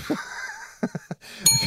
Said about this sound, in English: Like, let's say you and I had sex. I'm going to ring this bell here with my vagina. Yeah?